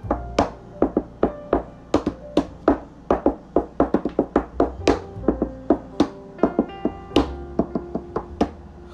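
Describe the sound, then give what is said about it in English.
Rhythmic hand drumming on a refrigerator in a kitchen, done to make music: a quick, uneven run of hollow knocks and thumps with a faint metallic ring, steady and fairly loud for about nine seconds, with no talking. “See, I have a hand, and I have a refrigerator, and I just want you to listen.”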